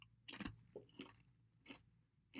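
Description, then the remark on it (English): Crisp crunching of Trader Joe's kettle-cooked olive oil potato chips being chewed, four distinct bites in a steady rhythm with brief pauses, no talking. “No, my crunching doesn't bother me one bit, but as soon as you start chewing down, it's going to annoy the daylight out of me.”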